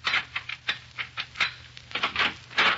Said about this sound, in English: In a Chicago apartment hotel overlooking Lake Michigan, an attractive young woman dressed to go out for the evening is pacing the floor in a fit of ill temper. Presently, the cause of her ill temper inserts a key in the door.